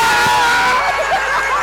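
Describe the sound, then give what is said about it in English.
A Wrexham football crowd roars loudly and continuously as Tozer takes a throw-in to the near post, a dense wall of cheering voices that swells slightly partway through and holds at full volume without pause. “And now here comes Tozer with the crowd roaring.”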